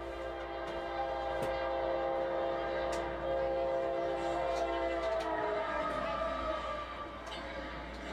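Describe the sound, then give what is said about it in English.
A CSX freight train, QO26, running northbound near Callahan with lead motor CSXT3161 and a DP unit running wide open, hauls truck trailers by rail (piggyback service) past on the rails: a continuous heavy rumble with layered metallic hum and squealing tones, occasional clanks and clicks punctuating the even, loud drone throughout. “A lot of truck trailers moving together by rail.”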